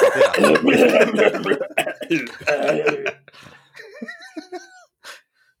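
Close, loud coughing in several rough bursts over about three seconds, then a few softer voiced murmurs like a brief chuckle before it goes quiet.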